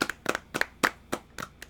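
A small audience at an award presentation claps in scattered, uneven bursts for the winner of the Bill O'Brien H-Man Award of the Year, sharp hand claps popping out about every fifth of a second rather than merging into steady applause. No one speaks over it.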